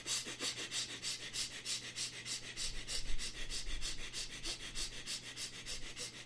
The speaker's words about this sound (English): So first, looking inside the heart, in the center of the heart, and start breathing playfully, quick, short, and the fast breathing through both the nostrils into the chest.